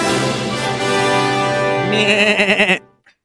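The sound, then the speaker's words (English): A single drawn-out, nasal vocal bleat, loud, turning into a quavering, wobbling warble before it breaks off: a person clearing their throat in a way that sounds just like a goat. “Excuse me, I was just clearing my throat. Was that a goat sound”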